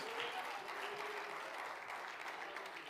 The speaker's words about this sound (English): Oh, clap your hands. If you're looking forward to that day, clap your hands and praise him.